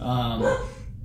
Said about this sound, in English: or that's the dog again.